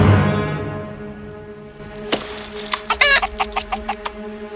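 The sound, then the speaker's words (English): A chicken clucking sound effect: a quick, jerky run of sharp squawks that start after a brief low rumble and grow denser toward the end, with no voices. “You know, when that one scene when he's in the Cafe 80s and he's like, "What's wrong, McFly? Chicken?"”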